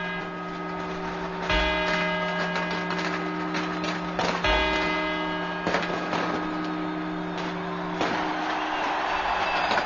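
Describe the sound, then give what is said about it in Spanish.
A clock's bells chime the four quarters before the twelve New Year's Eve chimes that end 1989: a few separate, resonant strikes spaced a second or more apart, each leaving long, shimmering overtones that hang over a steady low background murmur. “Notarán ustedes que el sonido es totalmente diferente, los cuartos a las campanadas.”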